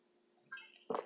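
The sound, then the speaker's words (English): A brief, quiet sip of water followed by a short gulp, with no talking around it. “I'm going to take a drink of water here.”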